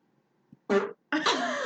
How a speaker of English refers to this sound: Can I fart real quick before you start?